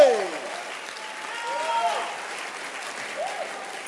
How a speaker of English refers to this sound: Clap your hands once again for Jesus.